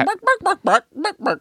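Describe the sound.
A human voice mimics a chicken, clucking in six short, evenly spaced bursts over about a second and a half, close and moderately loud, with harmonic vocal tones in each cluck.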